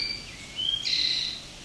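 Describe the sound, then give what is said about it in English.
A towhee sings a short, sweet phrase: a couple of clear whistled notes, then a brighter buzzy trill, over a quiet background, with no voices. “Could be part of a population of Northern Ontario towhee that have a sweeter song.”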